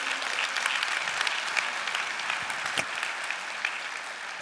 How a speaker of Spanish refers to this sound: Dale un aplauso al Señor de nuevo.